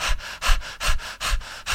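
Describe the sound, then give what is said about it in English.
A person imitates rapid, anxious mouth breathing, as in an anxious reaction, breathing through the shoulders and mouth: quick, airy in-and-out breaths repeating in a steady panting rhythm, with no talking. “would be like an anxious reaction, which means that they'd start to increase their breathing. And they'd start to breathe through the shoulders and the mouth.”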